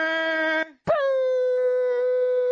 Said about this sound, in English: I was just hitting the air horns.